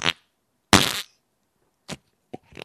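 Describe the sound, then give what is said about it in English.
A loud fart with a longer raspy blast in the middle, followed by a few shorter, sharper puffs spaced apart, with no talking. “Thank you for farting.”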